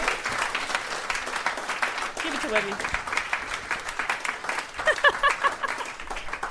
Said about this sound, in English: Round of applause!